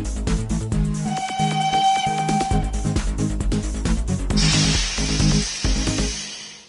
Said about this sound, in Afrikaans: Is dit dalk die Tinie trein wat ek daar gewaar?